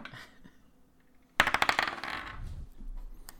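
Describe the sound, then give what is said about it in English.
Dice clatter across a hard tabletop in a quick burst of sharp, rattling clicks that tumble and bounce for about a second before settling, fairly loud, with no talking. “You could roll some fucking dice for God's sake.”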